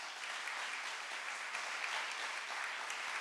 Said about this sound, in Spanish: Dale un aplauso a Jesús.